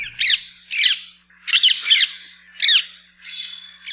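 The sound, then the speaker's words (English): Bright green rose-ringed parakeets squawk in a series of six harsh, shrill calls spaced roughly half a second apart, loud with no talking. “These squawking, bright green airborne menaces make horrible dinner dates.”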